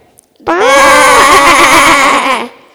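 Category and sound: vocal imitation, voice imitating sheep bleating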